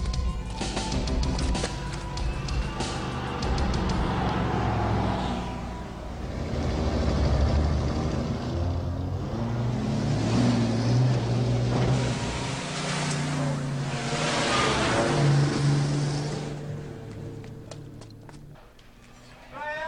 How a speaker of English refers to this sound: Why are they bringing in cars? I don't understand.